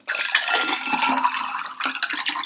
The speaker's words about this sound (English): Grab your glass, open up the shaker all the way, and you're gonna pour the whole thing in.